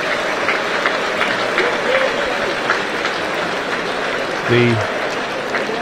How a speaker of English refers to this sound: Looking across as well, as he is now being put onto the stretcher, and getting a generous round of applause from the Wrexham and Barrow supporters, of course.